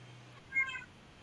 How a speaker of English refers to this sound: She has a lot of meows that she would like to get out in 2022. And she'd like to start now.